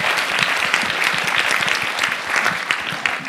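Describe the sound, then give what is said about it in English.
A crowd claps steadily in a dense, sustained burst of applause to thank the JCC hosts, loud, with many overlapping hand claps and no voices standing out. “as I really, truly want to thank everyone, especially the JCC, if we can give them a really quick round of applause.”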